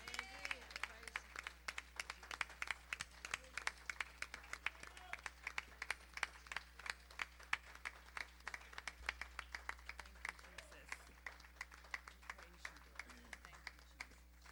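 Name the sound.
audience hand clapping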